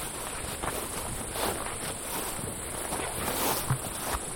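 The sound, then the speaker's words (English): A cicada in the bush buzzes steadily at a high pitch throughout, with soft rustling footsteps crunching underneath. No one speaks. “There's a cicada. Not very many of them I've heard yet.”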